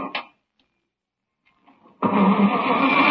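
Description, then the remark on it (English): A car engine grinds and cranks without catching, bursting in loud after a short click and a stretch of near silence, then churning steadily to the end. “Come on, car. Could your car be out of gas?”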